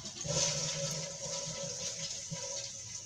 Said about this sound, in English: Sitting on a toilet. Now flush.